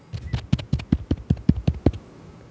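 A rapid series of about a dozen hollow knocks on a house door in a gated community at 1 in the morning, struck in a steady, insistent rhythm for two seconds before stopping.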